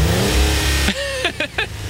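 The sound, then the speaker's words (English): A car engine roars loudly with a dense, rumbling drone, then revs up sharply a few times in quick bursts, prominent with no talking. “That was an engine, I believe.”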